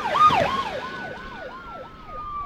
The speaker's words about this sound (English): were three police cars coming towards me. Lights flashing, sirens blaring.